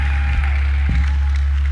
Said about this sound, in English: Give the Lord a clap, a shout, and praise in this house.